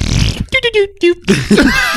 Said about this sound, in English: Hey, watch this. You want to see something really cool? Check this out. Watch this one. I just downloaded a fart board.